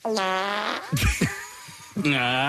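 A loud, close, buzzy fart: a long droning blast, a few sputtering pops in the middle, then a final toot that bends upward in pitch like a question. No talking.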